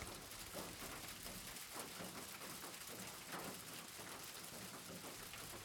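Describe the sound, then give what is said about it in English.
Steady, dense rain drums down furiously without letup on a family home's weak roof, a continuous hiss with countless small patters and taps, a heavy downpour lasting all night. No voices. “The rain began to furiously pound on the family home's weak roof, and it did not stop all night.”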